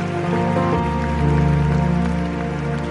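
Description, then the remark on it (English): A church audience claps steadily as a clap offering to Jesus, the many overlapping hand claps merging into a dense, rain-like patter, with sustained keyboard tones ringing underneath throughout. “Come on, increase that clap offering to Jesus.”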